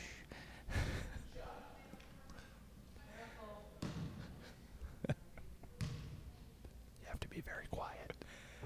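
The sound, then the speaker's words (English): A basketball bounces a few times in a hushed gym, with muffled thuds spaced irregularly while people whisper quietly in the background before a free throw. “All lined up for a free throw.”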